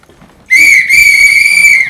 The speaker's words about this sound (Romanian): Fluiere?